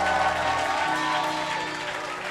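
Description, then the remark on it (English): An audience claps steadily for a couple of seconds for souls having been saved, a dense, even patter at moderate loudness that eases slightly toward the end, with faint sustained musical tones underneath. “Your clap is like you are not happy that souls have been saved.”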